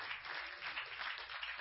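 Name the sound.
audience clapping hands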